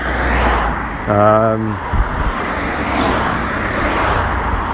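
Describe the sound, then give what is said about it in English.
Steady traffic noise of many cars rolling along a town street fills the whole stretch, with a short tonal blare cutting through near the start before the continuous roadway rumble resumes. “Just gets a bit grey and a bit noisy, like where I am right now. A lot of cars.”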